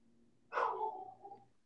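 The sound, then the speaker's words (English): A single dog bark rings out over a quiet low hum, its sharp start trailing into a drawn-out, fading whine-like tone. Nobody speaks. “And now we pause for a bark break.”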